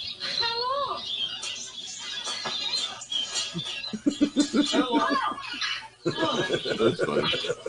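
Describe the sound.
Birds in a film chirp and squawk in quick, warbling bursts, followed by chattering, voice-like squawks and people talking over a steady background hum.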